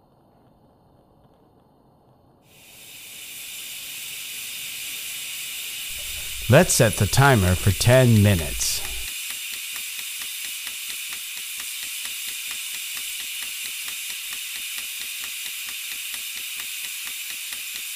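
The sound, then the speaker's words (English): A pressure cooker holding beef ribs on a medium flame in a kitchen starts venting as its regulator begins to rock: a steady, loud hiss of steam kicks in after a few seconds and continues unbroken, with a faint rapid rattle, while a person briefly speaks over it. “Now I'm going to set the flame to medium and wait a few minutes for the regulator to begin to rock.”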